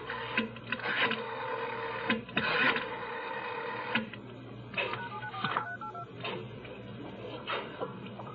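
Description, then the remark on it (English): A telephone being dialed: bursts of mechanical clicking and whirring repeat several times in an uneven rhythm, fairly loud and alone with no voices. “Who are you calling?”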